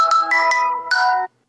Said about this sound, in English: Hopefully you got that sound. I am pretty sure that that is the default ringtone that came with my phone. I've never changed it. Now, you've probably heard it before, because it is a default Android Galaxy phone ringtone